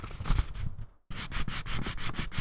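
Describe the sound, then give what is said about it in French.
Crepe paper tears in a steady series of soft, rasping crackles, one quick pulse after another, broken by a brief silent pause midway before the tearing resumes. No one speaks. “On a un papier crépon. De crépon. Donc, le son.”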